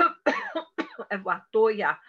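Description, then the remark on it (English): A person deliberately produces a series of about five forced, throaty coughs in quick succession as deep releasing during a session, each one voiced and drawn out with brief pauses between them. “I got to do some coughing a little bit for you, deep releasing.”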